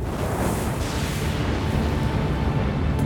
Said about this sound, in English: A great cloud billowed up from the mountain, bristling with lightning and thunder.